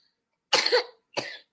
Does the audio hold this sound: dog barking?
no